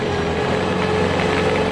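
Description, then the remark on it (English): An ice resurfacer's engine runs at a steady idle at a skating rink, a continuous low droning hum with a faint tonal whine riding on top, unchanging in loudness throughout, with no voices. “Ice resurfacer.”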